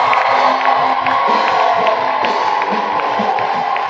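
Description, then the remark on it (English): A large church audience shouts and cheers to the glory of God, celebrating Jesus, in a sustained, loud roar, with whoops and raised voices blending into a dense, continuous wall of crowd noise. “Are you shouting to the glory of God?”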